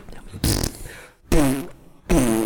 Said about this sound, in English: Imagine if someone put you in a room and just started playing fart noises for like 10 years. Different fart noises.